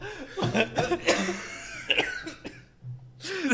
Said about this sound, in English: I'm sorry for your terrible cough.